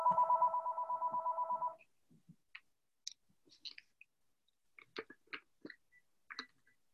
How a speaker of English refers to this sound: Okay, I apologize. I had failed to turn down the ringer on my home phone, so that is off now, and that will not happen again.